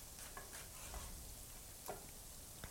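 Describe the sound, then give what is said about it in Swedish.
Garlic sizzles in a pan over fairly high heat, a steady crackling hiss with small pops and a couple of brief scraping stirs, fairly quiet, with no voices. “Vitlök ska vi väl komma ihåg att den ska ju inte... Den ska liksom inte brännas, tycker jag.”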